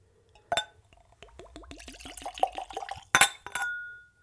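A bright glass clink, then a quick run of glugging as whiskey is poured into a clean, tulip-shaped Glencairn nosing glass, with rising gurgling tones, followed by two more sharp clinks and a lingering ring; fairly loud, no talking.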